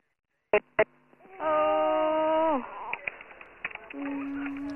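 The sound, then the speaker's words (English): A 1-month-old infant with a possible obstruction cries out in a sustained, high wail lasting about a second that falls away at the end, followed by softer whimpering cries, all thin and muffled as if over a phone line. “She's very, you know, I can hear the child crying.”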